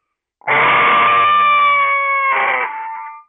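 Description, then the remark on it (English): A single loud, drawn-out screaming call from a game call blown to imitate a screaming buck, bursting in at full strength then slowly fading, with a raspy harmonic tone and a brief break near the end, heard alone. “Let's try hitting your peak right off the bat and dying off. Okay, so coming in hot. All right. Come in hot. You're a buck screaming.”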